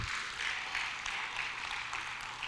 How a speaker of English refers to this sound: That's good. I'm glad you gave me like a little golf clap. That's cool because it ain't for me. It's for him. If you think he deserves a little golf clap, good for you.